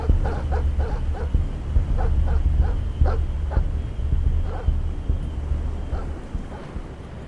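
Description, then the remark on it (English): Hounds tearing through underbrush bark in a ragged series of sharp, overlapping yelps that thin out and stop partway through, set over a steady, heavy low rumble. “I hesitated, with the hounds tearing the underbrush behind me.”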